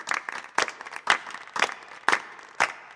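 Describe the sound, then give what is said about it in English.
An audience claps, starting as a scattered patter and settling into loud, unified claps in steady rhythm, roughly two per second, with no talking. “Think of the neurons firing in your brain like an audience, clapping.”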